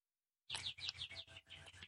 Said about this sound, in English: so if you hear loud birds in the background, that's because there's foliage just outside the window